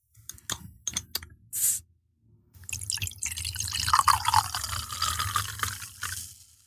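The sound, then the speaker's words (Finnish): A few sharp clicks and clinks of glass, then a steady, fizzy pour of Somersby cider into drinking glasses for several seconds, fairly loud, with no one speaking. “Ja tuli ihanan kepeä ja raikas fiilis, vähän niin kuin tämä Somersby on, joten pitäisikö kaataa mimmit juomalasiin?”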